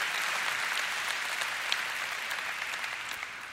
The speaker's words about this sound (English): Our applause was a physical expression of honor.